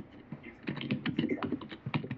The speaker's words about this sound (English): Somebody's typing away. That's me.